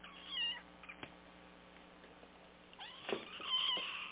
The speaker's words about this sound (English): Can you hear the cat?